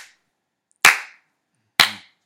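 Two loud, sharp handclaps spaced about a second apart, each with a brief ringing tail, following the faint end of an earlier clap; a deliberate slow clap applauding a guest's advice, with no voices.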